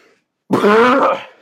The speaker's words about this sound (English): Here, just one sec. I have to cough.